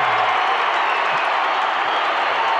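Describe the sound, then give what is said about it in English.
A big arena crowd at a Jazz basketball game, on its feet after a late-game dunk, roars and applauds in a continuous, loud wall of sound, cheering steadily for the whole stretch without any break or clear voices. “Jazz win this game, that's the play of the night. 99-94, the entire crowd on their feet.”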